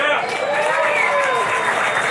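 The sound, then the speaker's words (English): An audience applauds in a dense, steady wash of clapping, with whoops and cheering voices rising through it, holding at a fairly loud level for the whole couple of seconds. “So, round of applause.”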